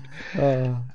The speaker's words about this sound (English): Oh, who's that? That would be my cat. Yes. Oh, I'm amazed that my cat hasn't come to me. She usually does.